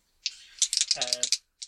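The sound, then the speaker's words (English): Dice are rolled for a simple discipline or cool check, with no purple dice: a rapid, rattling clatter for about a second, bright clicks bunched together, with a brief low hum of a voice overlapping midway and one last click after a pause. “At the end of each encounter, roll a simple discipline or cool check.”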